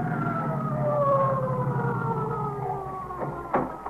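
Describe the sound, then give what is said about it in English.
An emergency vehicle siren, from either an ambulance or an emergency service car arriving at a five-story tenement building, wails loudly, its steady tone slowly sliding lower over a deep engine rumble, with a short sharp knock near the end. “That's either the ESC or the ambulance coming now.”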